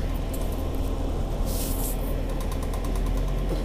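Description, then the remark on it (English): A bus engine drones steadily from inside the vehicle, a constant low rumble that never lets up, with a brief burst of airy hiss about halfway through. “So I'm on the bus now, y'all.”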